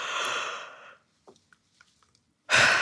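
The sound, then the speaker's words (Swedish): A person yawns: a long, breathy drawn-out breath that fades away, a quiet pause with a few faint mouth clicks, then another loud rush of breath at the end. “Innan man går och sätter sig i det här rummet där man ska bli intervjuad så är det bra att man går iväg en stund till närmsta badrum och faktiskt gäspa lite för gäspningar får en att slappna av. Testa själv nu bara.”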